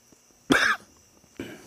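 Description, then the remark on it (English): A sharp, harsh cough bursts out after a mouthful of cigar smoke, followed a moment later by a second rougher cough, with no talking around them. “I mean, I just did the whole mouthful of smoke, so of course I have to cough.”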